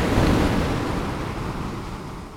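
A single ocean wave breaks with a loud, roaring crash of surf that slowly subsides into a steady hiss of churning water, with no voices.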